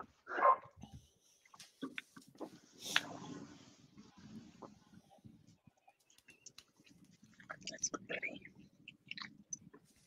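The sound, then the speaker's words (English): A dog at a house where the speaker is dog sitting lets out a loud bark at the start, followed by scattered softer yelps, snuffling and chewing-like clicks with movement noise. “I gotta let the dog in real quick.”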